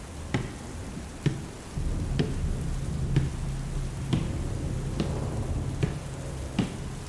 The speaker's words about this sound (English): I remember lying in that darkened second-story bedroom, the thunder and rain relentless overhead, straining to hear the actress's wet, naked footsteps upon the creaky wooden stairs.